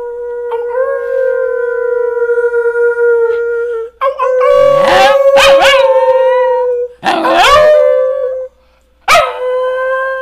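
The dog Archie howls loud in long, sustained wails, pausing briefly between them. Each howl is drawn out and steady, and a few rougher, yipping breaks cut into the later ones.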